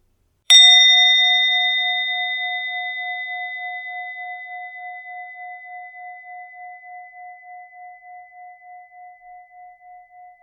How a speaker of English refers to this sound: In a moment you'll hear the bell, but as you do, I'd like you to actually only open your eyes, if you have them closed, when you can no longer hear the sound of the bell, when that's no longer making up part of your here and now.